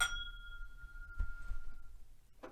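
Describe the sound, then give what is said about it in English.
Glasses of Joseph Magnus clink together once in a toast, leaving a bright ringing tone that slowly fades over a couple of seconds against a low background rumble. “So raise your glass. And cheers to Jesus.”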